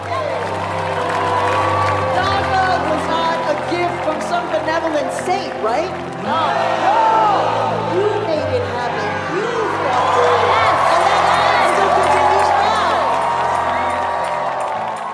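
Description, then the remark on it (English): A large crowd of protesters cheers and shouts in a scene from the film In the Heights, a loud, dense wall of voices that dips briefly midway before surging back up and sustaining to the end. “Y'all, I had to go back and rewatch In the Heights to see Maria seen as Juana, and there she was, surrounded by the crowd of protesters.”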